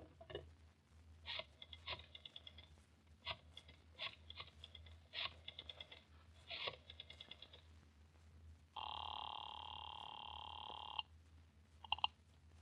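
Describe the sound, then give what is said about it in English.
A telephone on a desk is dialed with a series of clicking bursts, then a loud, steady ring buzzes for a couple of seconds, followed by one brief ring burst near the end. No one speaks. “Oh, if you want to use a phone, you may use mine right there on the desk.”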